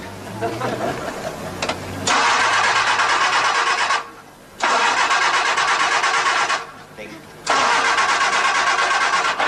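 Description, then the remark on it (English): The engine of a 1965 Cortina at a car dealership cranks over and over without catching, in three loud bursts separated by short pauses, after a brief stretch of quieter background sound. “You won't start, man.”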